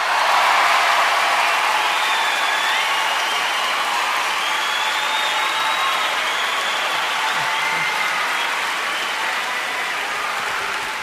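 A large audience at an Eddie Murphy stand-up comedy show applauds loudly and steadily for about ten seconds, a dense wash of clapping with faint cheers or whistles mixed in, and no one speaking over it.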